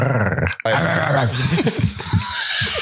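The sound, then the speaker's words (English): A loud dog growl and bark sound effect, rough and snarling, breaks off for an instant, then continues as a sustained throaty growl with a few sharper barking bursts. “What's it labeled as? Barking. I'd say more of a growl, but hey.”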